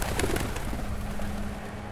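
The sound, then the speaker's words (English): Pigeons coo softly in low, throaty murmurs over a steady background hum, with no voices present. “One day, me and the kid was hanging out in the alley, and I was looking at pigeons flying around the funeral home.”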